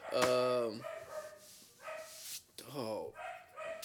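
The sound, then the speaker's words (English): A dog named Zelda lets out a loud, drawn-out bark, then a couple more yelping, whiny barks follow after a short pause, with some background noise in between. “Zelda, don't shut the hell up.”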